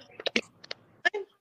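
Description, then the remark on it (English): A handful of quiet, sharp clicks pop irregularly on a caller's phone line during a call, some in quick pairs, with faint line noise between them and no clear talking. “Yeah, you still have that clicking. I think it's yours clicking.”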